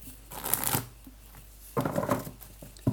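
Two bursts of crisp, papery riffling as a deck of cards is shuffled for a card reading, each lasting under a second with a short quiet gap between them.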